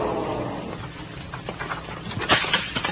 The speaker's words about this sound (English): Then I heard that shattering of glass. That meant the kid was using his gun butt to break through the little glass window in my elevator door so that he could reach in and spring it open.